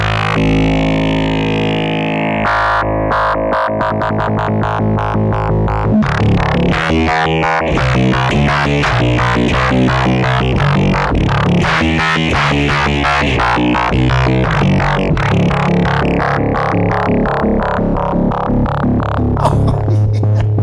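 A distorted bass line played through a filter pedal, chopped on and off by a fast square-wave LFO into a steady stuttering rhythm, loud and continuous with no voices.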